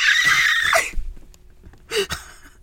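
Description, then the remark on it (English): A loud, high-pitched human screech lasting nearly a second, trailing off, followed by a short pause and a brief sharp squeal, both alone without speech. “I'm sorry. The screech.”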